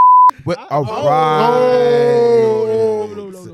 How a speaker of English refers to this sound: Beep that.